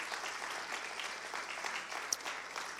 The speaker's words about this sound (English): I think it'd be all right to give them a hand clap. Amen.